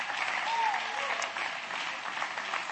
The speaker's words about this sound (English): Clap your hand to the Lord and give him praise right now.